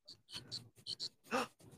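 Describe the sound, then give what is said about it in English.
A dog named Muddy sniffs a microphone in a quick series of short, breathy bursts, about seven in under two seconds, with one louder, fuller snuffle near the end. No one speaks. “Do you hear him sniffing?”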